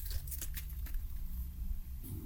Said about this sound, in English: Large piece of paper just came barreling down the stairs that I'm sitting on and hit me in the face.